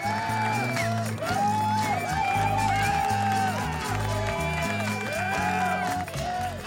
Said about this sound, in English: Well, now, can we have a very warm and genuine applause, please, for our guest today?